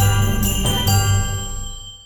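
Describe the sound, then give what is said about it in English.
A sound effect of glasses clinking in a toast for a virtual Christmas drinks party: three quick clinks in succession, each bright chime leaving high, ringing tones that slowly fade out over the next second or so, with no voices. “So thanks to our sound effects minions there who organised this virtual drinks party effects there.”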